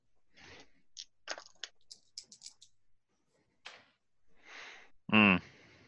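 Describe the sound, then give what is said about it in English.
Dice are rolled for a luck roll and come up 12, a fail. They clatter in a quick flurry of dry, rattling clicks that taper into lighter ticks, followed by soft rustling and a short, loud vocal outburst at the end. “Do a luck roll.”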